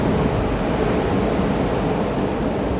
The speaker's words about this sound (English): So I'm just going to trust that we can hear the waves crashing and the surf coming in and out.